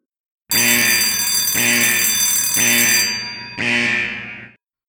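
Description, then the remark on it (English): A loud, harsh alarm rings in four steady, closely spaced bursts of about a second each, with no voices, electronic and piercing like a bell or buzzer; alarms ringing and a siren shrieking. “Alarms were ringing. A siren shrieked.”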